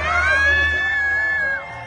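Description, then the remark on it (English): A loud celebration with car honks, applause and music: one long, steady, high car-horn tone holds for over a second above a noisy crowd cheering and shouting, then cuts off while the crowd noise carries on. “And then there's this celebration with honks, applause, music.”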